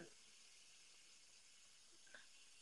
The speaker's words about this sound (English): Okay. I'm just adding the water to my machine.